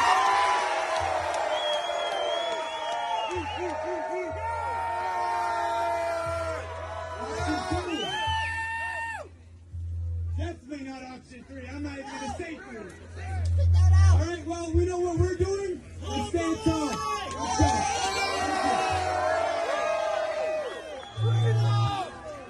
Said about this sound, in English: We're gonna do a quick cheer vote right now. So for option one, let me hear it.